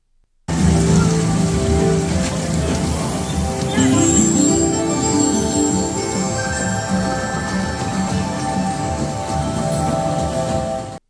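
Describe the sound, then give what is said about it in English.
Steady rushing, splashing water with bright tinkling, chime-like tones scattered through it, a continuous wash lasting about ten seconds, with faint murmuring voices mixed underneath. It is at the Journey of Water theme park attraction, one of the first places visitors interact with the water, and the sound is made by a person. “let me play two quick sounds just to kind of give you an idea of what the ambiance is like at the Journey of Water.”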